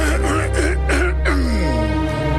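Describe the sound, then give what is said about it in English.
A man, a radio presenter on Starpoint Radio, clears his throat with a few voiced rumbling bursts that rise and fall in pitch, ending in a longer drawn-out sliding tone. “I'm just clearing my throat right about now.”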